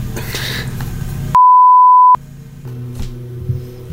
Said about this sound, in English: Wait, hold it. Hold for mower.